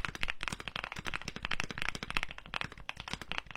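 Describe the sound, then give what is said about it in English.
Rapid, steady clacking of a mechanical keyboard being typed on, dense keystrokes, crisp and fairly loud with no voices. “I have so many mechanical keyboards.”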